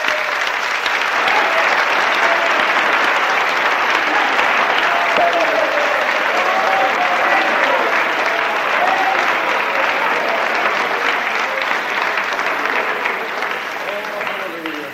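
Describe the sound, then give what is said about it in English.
An audience claps hands in loud, sustained applause for Jesus that fills the whole stretch, dense and steady, with faint voices calling out beneath it before it starts to ease off at the end. “Now, come on, let us all give Jesus a hearty clap.”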